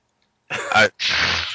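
A single sneeze, fairly loud: a short voiced intake followed by a sharp, breathy burst of noise, with silence before it and no talking.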